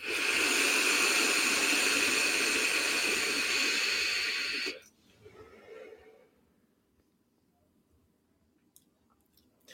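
A long, steady hiss of someone drawing hard on an e-cigarette set to 65, the upper limit for its 0.2 coil, for nearly five seconds, loud. It cuts off abruptly into a soft breathy exhale, then near silence.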